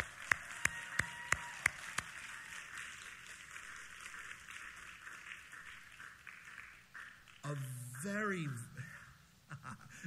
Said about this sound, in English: But please, please, please, would you join me in a round of applause for those who are serving us as our pastors here at The Brook.